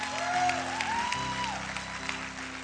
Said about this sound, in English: How many of you want to do Monday night? Do you want to do Monday night? Clap your hands if you want to do Monday.